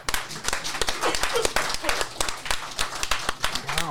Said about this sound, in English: Wow, a completely natural slow clap from the audience for that